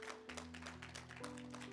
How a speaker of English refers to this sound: Let's give the Lord one more hand clap of praise this morning.